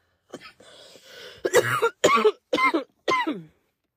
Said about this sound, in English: Fuck, what you think the cough is?